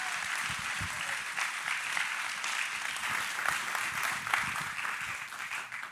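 A crowd applauds steadily as a woman is invited up to share words from her journey with God, a dense wash of many hands clapping with sharper individual claps popping through, holding a fairly even loudness throughout.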